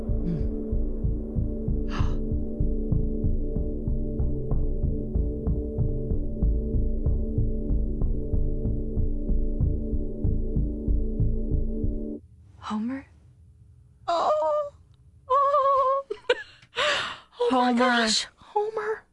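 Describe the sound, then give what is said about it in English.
A steady, rapid heartbeat thumps deep and loud for about twelve seconds over a low hum, then stops as people begin talking. “Is that a heartbeat?”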